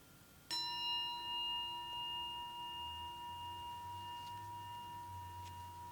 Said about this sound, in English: At the sound of the bell, I will begin leading.